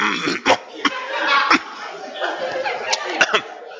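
Someone clears their throat and coughs repeatedly: several sharp, separate bursts scattered over a few seconds, with rough, raspy throat noise in between.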